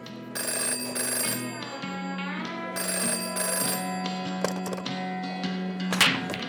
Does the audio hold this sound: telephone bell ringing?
yes